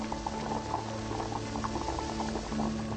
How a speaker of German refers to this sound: Was, du fauchst? Bestie. Willst du mir Angst machen? Bist doch eine gute Kaffeemaschine, nicht wahr?